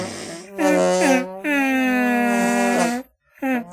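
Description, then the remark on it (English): A run of musical arm farts: buzzy, honking squeaks with a clear pitch that wobbles up and down, including one long sustained blast between shorter bursts, with no talking. “And I don't have a sign-off, so what I usually do is a musical arm fart.”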